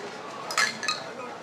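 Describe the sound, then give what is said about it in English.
Glasses clink together twice in quick succession in a toast, bright with a short ringing tone, over a low murmur of voices in the background. “Cheers, by the way. Cheers. Cheers. Cheers.”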